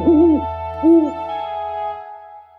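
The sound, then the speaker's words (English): Two rising-and-falling owl hoots, spaced about a second apart, sound clear over a faint steady hum, with no voices present. “Down from the rafters, on leathery wings, a little bat's squeaking while the old owl sings.”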